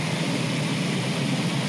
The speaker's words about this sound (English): That's the brown, right? No? That's the pink. Pink noise for dreaming.